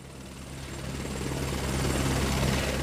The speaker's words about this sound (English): Hey, where do you think, where do you think this helicopter's going? What? I hope, we gotta get out of the country. This thing better be going to America. I hope this thing's going to America.